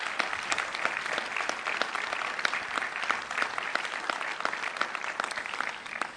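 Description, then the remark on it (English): An audience at a church dedication Sunday service breaks into a steady round of applause, many hands clapping in a dense, continuous patter that holds at an even level for several seconds without any voices. “So if you want to give a round of applause for those folks, that'd be great.”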